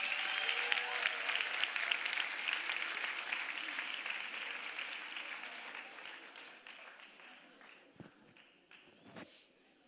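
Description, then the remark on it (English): An audience applauds with dense, rapid clapping that starts strong and gradually thins and fades over several seconds, leaving a few scattered claps and faint noises at the end. “Give these guys a hand clap.”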